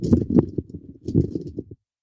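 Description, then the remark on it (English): A sheet of paper is crumpled up in two quick bursts of crackling and rustling, each lasting under a second, then it goes silent. No one speaks. “Oops, I crumpled the paper up.”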